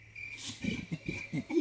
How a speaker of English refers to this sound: Oh, okay, so that is an orangutan.